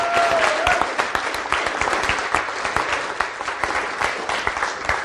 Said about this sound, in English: All right. Let's give them a warm welcome. Warm round of applause.